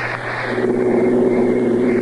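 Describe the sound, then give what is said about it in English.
A car engine runs loud with a steady, humming drone and a slight rise in pitch, as if pulling away, as the car is driven on Atlantic Imperial gasoline. No one speaks. “Let's give it a bit of a go with Imperial, eh, what?”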